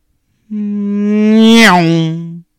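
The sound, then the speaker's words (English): A voice imitates a car doing 90 miles per hour down a one-way street in Orlando: a loud, sustained buzzing hum that swells, then dips in pitch midway like an engine passing by, lasting about two seconds. “But first off, let's hear you guys make your best sound of a car doing 90 miles per hour down a one-way street in Orlando.”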